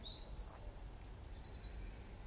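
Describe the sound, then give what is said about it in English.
Faint, high, thin bird calls drift in outdoors in a garden, a couple of drawn-out whistling chirps a second apart, over a soft, steady low rumble of traffic in the background. No one speaks. “You'll hear the noises of birds and traffic.”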